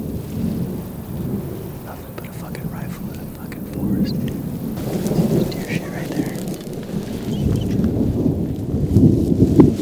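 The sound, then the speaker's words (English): An outdoor thunderstorm with lightning at a deer bedding spot rumbles steadily, deep rolling thunder swelling beneath a constant hiss of rain, growing slightly louder toward the end with scattered drops pattering. “So beautiful out here with the lightning and everything and the weather.”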